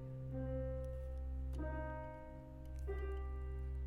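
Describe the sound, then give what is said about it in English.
A minor chord rings out on an instrument, its notes sustained and steady, with fresh notes struck three times so the harmony swells and settles without any talking. “Now, this would be a minor chord.”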